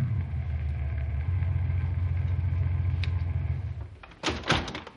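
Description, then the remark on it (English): A car's low engine rumble runs steadily, then eases off and fades as the car cuts its speed and coasts up to a house, rolling to a stop, followed by a brief clattering clunk like a car door. “Cut the speed of your car and coast up to the house.”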